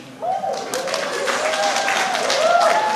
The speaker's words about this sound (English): She was applauded, and rightly so.